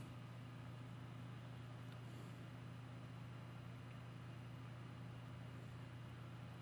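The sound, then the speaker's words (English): A steady, continuous engine drone with a low hum, like a car running or driving at constant speed, heard alone at moderate loudness with no voices. “Damn, you guys are speeding around, huh?”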